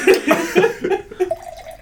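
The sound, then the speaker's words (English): Wine glugs and splashes as it is poured from a bottle into a glass as a top-up, the pitch climbing steadily as the glass fills. It is fairly loud, lasting about two seconds. “Okay, just to contextualise, I'm topping up and I've got that booze problem.”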